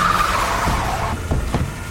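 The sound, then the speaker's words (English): A Humvee roars and brakes hard, a brief tire squeal up front followed by heavy rumbling thumps of the engine and chassis, loud and continuous with no voices. “Did you really have to run over the commander? Stop the car!”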